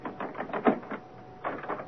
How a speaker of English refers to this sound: Unlock the door.